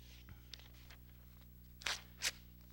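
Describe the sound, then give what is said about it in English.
Paper rustles as someone searches for a sheet: a few faint taps and clicks, then two short crinkly bursts, fairly quiet, with no talking. “And I'm looking for a piece of paper.”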